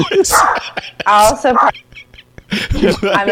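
A dog barks in a few loud, drawn-out bursts separated by short pauses, the yelps sounding high and strained.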